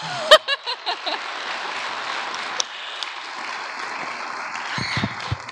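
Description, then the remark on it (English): An audience breaks into applause, a few sharp claps and a quick whoop at first, then steady, sustained clapping from a crowd that carries on to the end. “So, round of applause”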